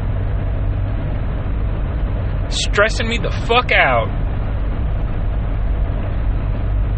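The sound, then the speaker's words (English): A car drives along a highway in the dark, with two cars side by side, two cars behind and one beside it, its steady low engine and road rumble filling the whole clip, while a man speaks briefly and irritably over it. “It's dark as fuck, and there are two guys just driving side by side, one just to fucking bump cocks together.”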